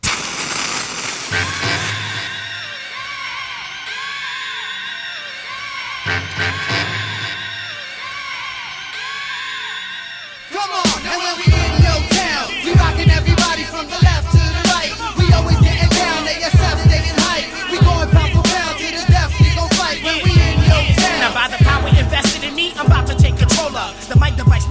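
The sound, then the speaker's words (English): A traditional hip hop track: a tonal, shout-filled intro with occasional heavy booms gives way after about ten seconds to a loud, steady thumping drum beat under dense layered sound. “I rediscovered it in the last couple of years, and like, to me, it's a really cool, just kind of trad hip hop song,”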